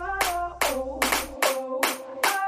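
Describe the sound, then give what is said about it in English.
Six sharp, evenly spaced hand claps open a song, landing on a steady beat over sustained synth tones, with no voices. “I love the like claps at the beginning.”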